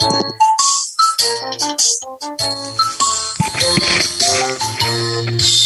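A bright, tinkly nursery-rhyme tune plays from an Alexa smart speaker, its bell-like melody bouncing along steadily, fairly loud, with no one talking over it.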